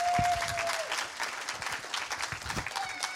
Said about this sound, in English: Thank you, guys. A round of applause for these guys for helping out.